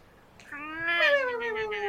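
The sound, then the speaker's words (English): A voice imitates loud goose honk snores: one drawn-out nasal tone, strong, swelling slightly and then sagging over about a second and a half, with no talking. “And then you hear very loud goose honk snores.”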